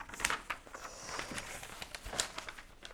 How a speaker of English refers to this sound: Hope everyone's enjoying this excellent paper Foley work. In that big, big folder. Is it Foley if it's real paper? Yeah, sometimes they use the actual thing for the Foley.